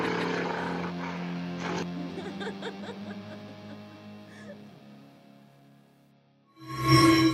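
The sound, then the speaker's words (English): A traffic-report helicopter drones overhead with a steady, throbbing rotor hum that slowly fades, followed by a sudden loud burst of noise at the very end. “It's … of the Chopper for Wake Traffic.”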